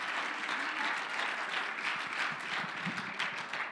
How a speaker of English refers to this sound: Oh, I wish you'd clap your hands unto the Lord and shout unto God. Hallelujah.